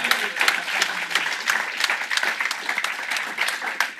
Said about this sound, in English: Before we let this live audience go as well, we have to thank our hosts here at Level 39. So please, can we have a round of applause for our hosts at Level 39?